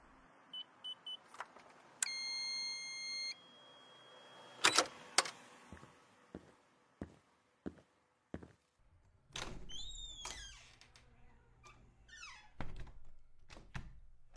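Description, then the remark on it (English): A car door clicks open and shuts with a solid thunk, surrounded by short electronic beeps, a whirring motor and several lighter knocks and rattles; no one speaks. “Can I get the door for you?”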